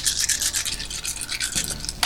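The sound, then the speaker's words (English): A handful of twelve six-sided dice, rolled for damage in a tabletop game, rattles and clatters steadily for about two seconds in dense, crisp bursts, ending in a sharp final clack as they land. No one speaks. “Roll 12d6 damage, and tell me both body and stun.”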